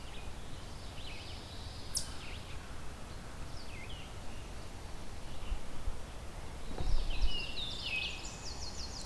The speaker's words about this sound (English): Oh, what was that? I think that was the Baltimore Oriole singing. Yep. Yeah, that's a singing Baltimore Oriole.